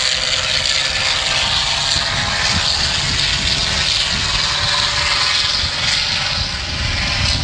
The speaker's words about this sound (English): There goes that Sea Fury.